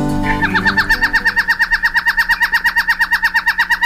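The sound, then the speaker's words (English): A small raptor calls in a fast, steady series of sharp, high-pitched notes, about eight per second, loud and unbroken for several seconds with no voices. “There it is, our mystery bird, the small raptor, found mostly on the Pacific coast from southern Alaska to Central America.”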